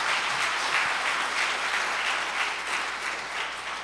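A church audience applauds the guests who led Sunday worship, a dense wash of many hands clapping at an even, sustained level with no voices heard over it, easing off slightly near the end.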